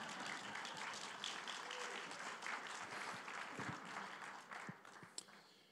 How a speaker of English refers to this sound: Thank you both for being here today. You can clap for them if you want to.